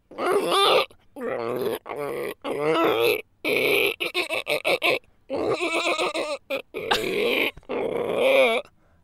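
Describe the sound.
A person vocally imitates a bizarre ostrich-horse creature, producing a string of loud, wavering grunts, groans and squealing honks in choppy bursts, some rapid and stuttering, with brief pauses between.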